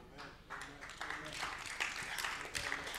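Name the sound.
audience clapping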